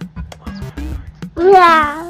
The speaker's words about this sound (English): There's that cat again, said Dragon.